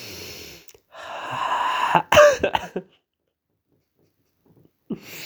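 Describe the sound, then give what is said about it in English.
A harsh coughing fit: a strained, wheezy build-up followed by a cluster of sharp, loud coughs, then silence and one last short cough. “I think I'm just going to have to end this one because there's a lot of coughs building up here.”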